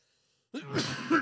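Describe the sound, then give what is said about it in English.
A single sneeze bursts out abruptly after a moment of silence, a harsh, breathy blast with no talking around it. “Bless you.”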